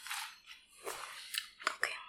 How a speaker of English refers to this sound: I'll do one more, and then we'll get into it, because I feel bad for people to having to listen to us chew. Maybe they like it.